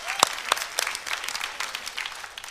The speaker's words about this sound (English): Can we give the Lord a clap praise?